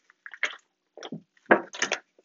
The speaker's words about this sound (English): Hold on, let me take a water break.